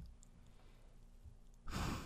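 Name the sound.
heavy breathing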